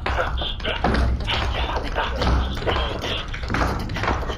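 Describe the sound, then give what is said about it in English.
Rapid tap-dance 'shuffle off to Balthazar' footwork, a steady stream of crisp taps and scuffs with low thuds underneath, fairly loud and continuous throughout. “Let's see a little shuffle off to Balthazar.”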